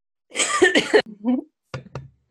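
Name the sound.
a cough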